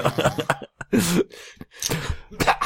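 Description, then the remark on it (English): A voice acts out a sneeze: a sharp breathy burst with a voiced, moaning edge, followed by a second rough, noisy exhale. There is no other sound around it. “I sneeze in his mouth.”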